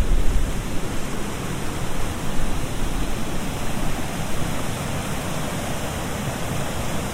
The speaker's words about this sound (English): There we go, I can hear the river again. Listen to that. Lovely.